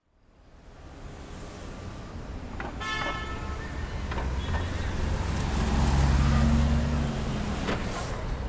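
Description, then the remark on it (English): Ambience at the main bus station in Ulaanbaatar, Mongolia, as the day grows hot, fading in: steady traffic rumble and idling engines, a short tonal horn or brake squeal, and low motor drones building louder, with faint background voices. “The main bus station in Ulaanbaatar, the capital of Mongolia, is starting to get hot.”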